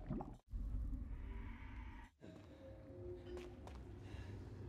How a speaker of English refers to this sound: If you listen to the breathing, it kind of sounds like a man. Let me get to a part where it's breathing.